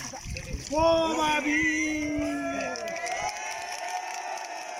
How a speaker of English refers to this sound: The second man to service, from the Makuri tribe, lifted his arms triumphantly into the air and the watching crowd cheered. He was the winner.